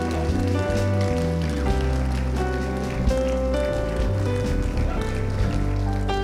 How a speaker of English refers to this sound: And Lord, right now, we give you an applause for the work that you've done. Come on, church, give the Lord a hand clap for what he's done.